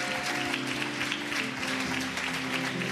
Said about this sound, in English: If you love Jesus and you're in agreement, can you clap your hands and say thank you to God?